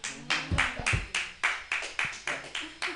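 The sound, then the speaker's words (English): Scattered, thin applause from a small audience: about ten sharp handclaps in an uneven rhythm over three seconds, each a crisp, fairly loud smack with a brief decay. “This is some dark claps I'm getting.”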